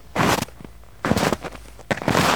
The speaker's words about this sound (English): His footfalls crunched in the fresh snow, the sound oddly reassuring in the muffled world.